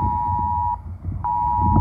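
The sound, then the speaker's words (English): A phone's tornado warning alert, heard during a storm with thunder and lightning, sounds as a steady, mid-pitched electronic tone. It breaks off for about half a second, then resumes over a low, rumbling background. “When the tornado warning came across my phones, I lost internet.”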